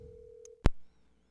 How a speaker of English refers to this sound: And sometimes he might not pick up, so that's what makes the show fun. All right, the phone is dialing. And once he gets on the phone, I'll put the microphone up to him.